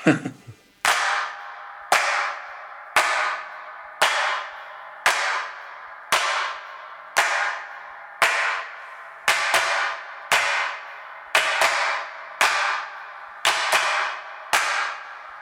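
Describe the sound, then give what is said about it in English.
Hand claps land at a steady beat of about one per second, each a sharp, bright smack trailed by a long, washy 80s-style reverb tail, the recognisable 'Strawberry' reverb, with a few doubled hits toward the end. “There's the hand claps that have got the recognisable strawberry reverb on them.”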